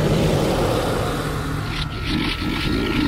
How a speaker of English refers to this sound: You hear the growling sound as Trick is flung across the shed.